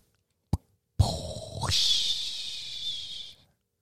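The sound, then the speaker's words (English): A sharp click, then a whoosh transition effect: a low rumbling burst sweeps upward into a bright, airy hiss that holds for nearly two seconds before cutting off, with no voices. “The whoosh.”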